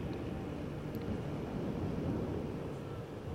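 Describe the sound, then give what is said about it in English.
A steady, low droning rumble of an airplane passing overhead, holding an even loudness throughout with a broad, wind-like roar and no voices. “So here's the airplane.”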